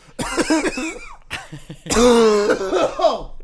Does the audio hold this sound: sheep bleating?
no